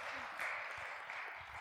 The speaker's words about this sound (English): You guys give her a big round of applause.